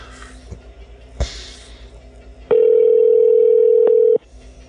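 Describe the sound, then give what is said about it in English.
A phone call rings on the line: one steady, loud electronic ringback tone lasting under two seconds, preceded by quiet line hiss and a couple of faint clicks, with no one answering. “Nobody picks up. Everyone screens.”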